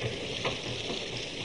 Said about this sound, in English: Hey, listen. There's water pouring in somewhere. I'll go check.